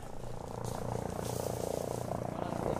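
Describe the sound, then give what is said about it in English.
Helicopters hover overhead at a dusty, hot Marine base, a steady rhythmic thumping of rotors with a dense, continuous roar that fills the whole stretch at an even, moderate loudness. “Helicopters hover above us, and Marines in fatigues walk past metal Quonset huts.”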